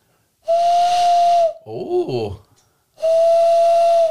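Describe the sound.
Two long, breathy owl hoots imitated by blowing into cupped hands, each a steady airy tone lasting about a second and loud, separated by a brief spoken exclamation.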